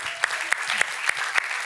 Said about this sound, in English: Congratulations to those that went through water immersion. Can we just clap for them today?